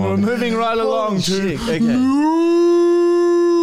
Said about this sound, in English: and that's a cow, which means it's time for comment of the week